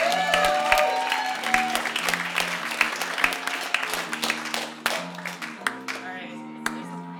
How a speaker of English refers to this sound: Did you give Nathan a round of applause? Because this is amazing.